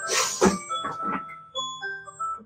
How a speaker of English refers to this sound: I'm going to totally give you an answer to this as soon as I turn my phone alarm off, because I forgot. It keeps being set for 12:30. Hold on.